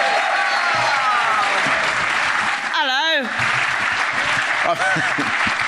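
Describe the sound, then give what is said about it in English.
Loud, sustained applause from a large audience for Angela Barnes fills the whole stretch, dense and steady, with a few cheers or whoops rising briefly above the clapping. “And so I would like you to give a huge round of applause, please, to Angela Barnes, who's going to help us to answer some of the questions.”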